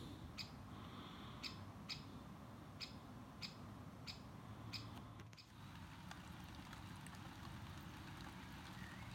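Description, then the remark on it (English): A great spotted woodpecker gives a series of sharp, clipped calls at a steady pace, around eight in a row, over constant rain and hail noise before stopping, in Oxfordshire, England, on 25 June 2016; no one speaks. “I'm being heckled by a spotted woodpecker.”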